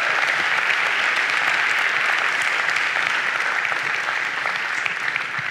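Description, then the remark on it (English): A church audience applauds steadily after a testimony of a man's healing, a dense wash of many hands clapping at once, loud and sustained for several seconds without pause or voices over it. “But you didn't clap for the first part of the story, did you?”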